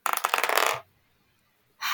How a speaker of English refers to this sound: All right, dice, don't fail me now.